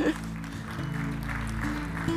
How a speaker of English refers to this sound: How about you give Sharon a hand?